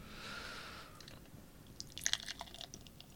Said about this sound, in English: The lovely sound of a good pour.